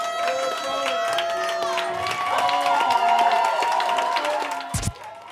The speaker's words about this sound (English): Can we run a round of applause for both Sat and my friend who is now at Williams Lake?